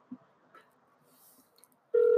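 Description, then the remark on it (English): A telephone call-waiting beep as the speaker's sister calls in on a live call: a single loud, steady mid-pitched electronic tone that cuts in abruptly near the end after a stretch of faint, quiet background, with no talking. “So my sister just beeped in.”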